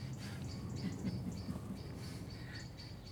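A wide variety of birds chirp and twitter outdoors, with short high-pitched calls repeating over a steady low rumble of ambient background noise.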